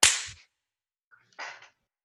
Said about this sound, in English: Should I clap again to mark the change? Oh, my gosh. I'm going to do it. Okay, here I go.